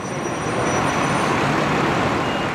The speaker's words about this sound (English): Now just imagine, as the bus pulls up, there you are with your mates, your bags packed, and you're going to spend a few days at a camp by the sea, somewhere you've never been before.